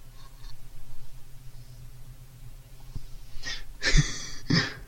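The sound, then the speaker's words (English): Someone snores: a low, rumbling drone followed by a few harsh, raspy snorting breaths near the end, with no talking. “don't give me that angry look of like, you do snore”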